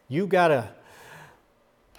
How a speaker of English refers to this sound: You gotta inhale and you gotta exhale constantly. If you stop doing that, if you stop breathing, you die.